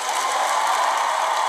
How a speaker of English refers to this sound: So kudos and an applause